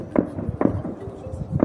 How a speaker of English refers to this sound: Gunshots and anti-government chants could be heard.